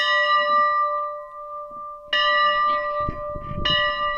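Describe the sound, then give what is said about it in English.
A church bell, a replica of the church's original 1899 bell, rings out loudly with long, sustained metallic tones, struck again about two seconds in and once more near the end, each strike blooming over the lingering hum. “This bell is a replica of the original bell that was built outside our church in 1899.”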